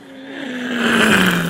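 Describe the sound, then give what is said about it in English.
A voice imitates flying cockroaches, likened to Boeing airplanes, with a sustained, droning hum like a jet engine, steady in pitch and swelling louder over about a second and a half. “Oh, but cockroaches were flying by, and I don't know I if didn't they know were... they flew. They sound like fucking Boeing airplanes.”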